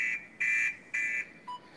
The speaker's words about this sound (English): I saw a woman do a strip piece to that sound. Yeah, alarm sound. It feels right.